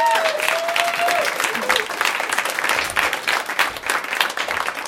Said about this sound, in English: Like, just can you give a big round of applause for these guys?